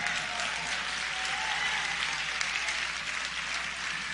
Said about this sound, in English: Now, y'all really going to clap, because a Duke Fellowship basically means he ain't got to pay for nothing next year.